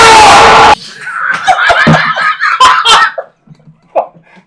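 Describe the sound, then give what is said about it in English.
A loud, harsh human scream, given on request, bursts out for under a second, then cuts off and gives way to several people giggling and laughing. “Can you give us a scream?”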